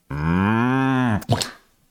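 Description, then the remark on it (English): A person imitates a cow with one long, loud, steady moo lasting about a second, ending in a short breathy snort or grunt, with no other voices. “So can you pronounce moink properly for the...”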